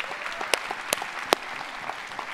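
A church audience at Renew Life Church breaks into a round of applause for first-time guests, a dense steady patter of many hands clapping, with a few sharper, louder claps popping out above the wash.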